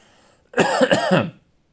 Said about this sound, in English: This cough is not going anywhere. Is it an issue? Hope not.